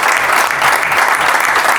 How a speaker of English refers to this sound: Think a round of applause is necessary. Thank you. Thank you.